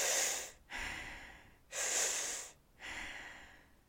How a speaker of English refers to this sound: we're removing the natural pause of the breath. So when we breathe in naturally, we pause. We breathe out, there's a slight pause. We're removing that. So we're breathing in a cycle.